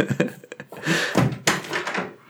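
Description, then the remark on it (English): A door is handled and swung open for a cat: a few quick knocks and clicks, then a broad creaking, rustling sweep and a sharp thump as it moves, moderately loud. “I just heard her meow, so I'm pretty sure that the door closed experiment is now failing, so one sec.”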